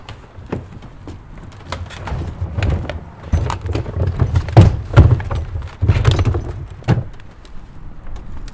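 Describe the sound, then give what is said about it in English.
A heavy wheeled coal wagon is moved back along, its brake pad held off the wheel by a small wooden chock, with low rumbling, repeated wooden thunks and knocks, and a creaky groaning quality, with no talking. “We'll move it back the other way just now.”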